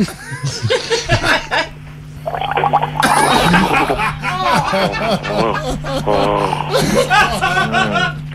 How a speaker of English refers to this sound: Have a sip of wine and gargle.